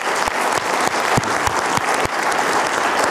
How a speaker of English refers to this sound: Can we give them all a big round of applause?